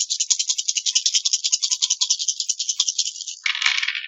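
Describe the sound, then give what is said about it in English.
Dice rattle steadily in a rapid, even clatter of small clicks for about three seconds, then tumble out in a denser, scattered burst at the end. No one speaks. “Yay, wiggle dice.”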